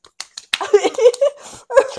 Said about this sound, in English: I did the clapping for, like, sound effects, but, like, she's being silent.